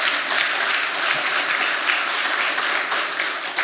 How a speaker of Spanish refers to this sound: ¿Cuántos dicen amén conmigo? Si lo crees, dar un aplauso fuerte, Señor.